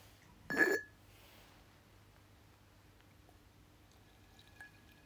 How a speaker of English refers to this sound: So I'm going to pour myself another bowl of tea.